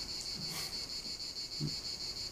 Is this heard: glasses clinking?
no